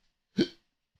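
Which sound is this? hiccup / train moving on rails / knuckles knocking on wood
hiccup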